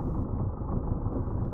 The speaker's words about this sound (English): That's when I hear it. The sound of a boat idling out in the dock.